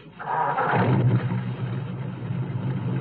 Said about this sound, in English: Wait, there's a car coming. Yeah, I see it. It's slowing to turn in our driveway. Well, that's too bad, because they're going to have to wait for us to drive out first. It's the sheriff's car.